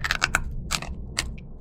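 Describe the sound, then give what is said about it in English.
Loud crunching of crisp roasted bean snacks being chewed, several sharp bursts in quick succession followed by a few more crunches after a brief pause, with no talking. “All with a crunch that rivals potato chips. Seriously, listen for yourselves.”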